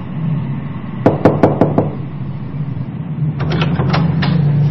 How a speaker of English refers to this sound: One night, there is a knock on the door of the apartment